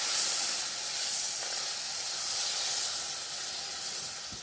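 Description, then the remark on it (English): A steady, bright hissing sizzle as chicken broth is poured a little at a time into a hot pan while being stirred, running unbroken for a few seconds at an even level with no voices. “So keep stirring as you pour in your chicken broth.”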